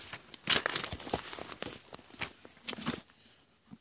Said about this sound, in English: Let's see here. Shuffle my books around.